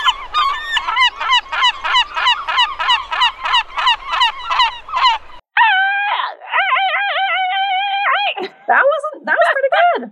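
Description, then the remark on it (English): Human voices imitate bird calls, first a quick run of goose-like honks, then longer wavering, drawn-out hoots and squawks, loud. “We can't even get the easy birds right.”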